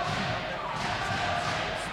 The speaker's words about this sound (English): You hear the Pistol Shrimps chant from the crowd.